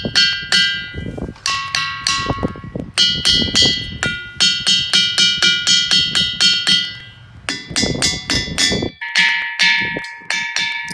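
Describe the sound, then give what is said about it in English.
Solid, sonorous rocks struck over and over by a group of about 20 people in a quick, uneven rhythm, each hit ringing out with clear, bell-like tones at several different pitches, the chimes overlapping and sustaining loudly with no talking. “We're all just hitting rocks and listening to them sound like bells, basically, but they're not hollow, they're solid.”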